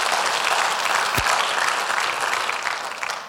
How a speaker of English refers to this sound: Oh, you clap.